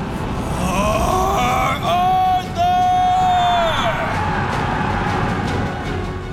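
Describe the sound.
A large crowd roars and shouts in a loud, continuous wall of voices, with a few prominent yells rising above the din for several seconds before the clamor settles into a steady rumble.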